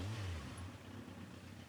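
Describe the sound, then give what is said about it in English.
Someone imitates a revving motorbike with a low, buzzing vocal drone, fairly loud, rising at the start then holding steady for under two seconds with no other talk. “That was my impression of a motorbike.”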